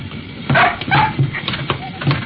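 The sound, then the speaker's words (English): A dog lets out a few short barks mixed with high, whiny whimpers, coming in quick bursts over a couple of seconds against low background noise, as it and a man squeeze through a small plane's door at the same time. “Trouble is, him and the dog tried to make it at the same time.”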